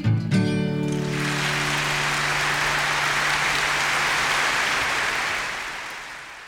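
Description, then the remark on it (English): A live song ends on a ringing final chord, then a crowd breaks into steady, dense applause that carries on for several seconds before fading out. “Sorry for that, I forgot to cut that out just before the applause at the end.”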